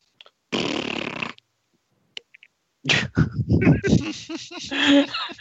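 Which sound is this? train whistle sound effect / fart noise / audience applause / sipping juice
fart noise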